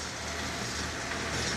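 A tractor engine rumbles steadily, a continuous, even drone with a gritty, noisy texture and no breaks or changes in loudness. No voices are heard.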